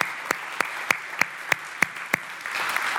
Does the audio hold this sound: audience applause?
yes